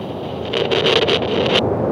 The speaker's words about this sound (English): Be aware of the sound of air.